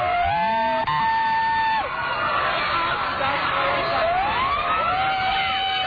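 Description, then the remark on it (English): Several sirens of a motorcade wail and sweep in overlapping tones, loud, over a dense background of crowd noise and vehicles in Grand Junction, Colorado, as about a dozen protesters run into the street in the motorcade's path. “Are those sirens people or protesters?”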